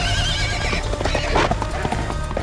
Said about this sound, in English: Nessus let out a bellowing neigh and charged.